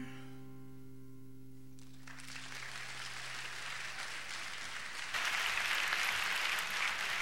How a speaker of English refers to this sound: Nice, wasn't it? Those applause for me, right? Yeah. Honestly, don't applaud him. It just encourages him.